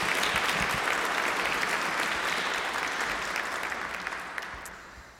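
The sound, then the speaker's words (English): Sustained audience applause for the volunteers who work with children and youth, a dense, steady patter of many hands clapping at an even loudness before gradually thinning and tapering off at the end. “That deserves big applause.”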